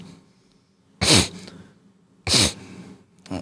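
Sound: sneeze or sniffle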